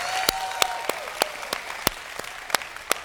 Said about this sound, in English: So if you're happy and you know it, clap your hands.